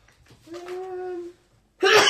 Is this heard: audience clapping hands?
no